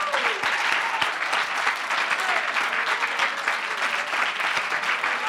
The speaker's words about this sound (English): Give the Lord another real good hand and clap of praise.